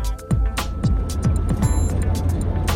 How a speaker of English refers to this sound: You're catching me in the car.